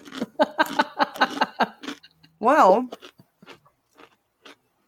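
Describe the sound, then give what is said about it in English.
Someone chews a dry fortune cookie, with soft, irregular crunches and mouth clicks following a short spoken word and a drawn-out, wavering vocal hum. “Fortune cookies are a little bit dry.”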